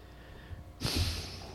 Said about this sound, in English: She's cringing right now. I'm liking this heavy breathing through the nose.